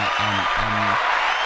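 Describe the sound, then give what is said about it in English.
A burst of dense crowd applause fills the whole moment, steady and fairly loud, with two short low humming tones rising briefly beneath the clapping. “So we applaud you, sir. Now, we ain't gonna bail your ass out, but we applaud you.”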